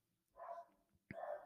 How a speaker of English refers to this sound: And there's my dog barking in the background. It's all going on here today.